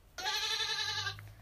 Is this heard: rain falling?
no